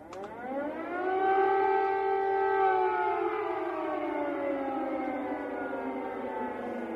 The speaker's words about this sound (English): These are some of the air raid sirens that are being heard in the capital of Kiev today. Take a listen.